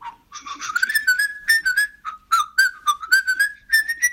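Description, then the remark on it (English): Someone whistles a brisk sailor's hornpipe tune, a run of quick, bouncy notes in a steady jig-like rhythm, clear with no talking over it. “I think it's the sailor song. Which the whistling?”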